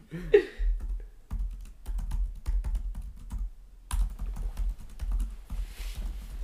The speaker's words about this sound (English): The most entertaining part of the podcast is me typing on the computer, I hope.